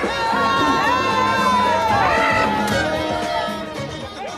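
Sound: crowd cheering outdoors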